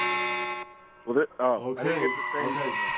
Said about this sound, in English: the alarm went off before we heard your plea, your argument.